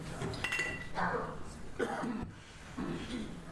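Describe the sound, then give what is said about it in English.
Water is poured into a glass in a few short splashy bursts after a light clink of glass, with a low murmur of voices underneath. “That wasn't a dramatic pause to pour the water, but after all of that, perhaps that's what we need.”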